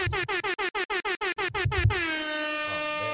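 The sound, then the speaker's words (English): A loud air horn fires a rapid string of about ten short, choppy blasts, then holds one long sustained blare that gradually fades out. No voices are heard. “Let me make sure I got the air horn ready for you”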